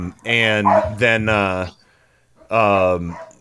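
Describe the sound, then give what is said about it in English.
A neighbor's dog barks right outside a side window in three loud, drawn-out, almost howling barks: two close together, then a short pause before the third. “So, there's the neighbor's dog.”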